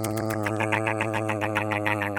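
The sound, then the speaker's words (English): A voice imitates a squirrel ring-barking cricket willow branches, making a steady, buzzy hum broken into quick rhythmic chomping pulses, about four or five a second, for a couple of seconds. “like a corn on the cob type thing, stripping all the bark off and eventually killing the tree.”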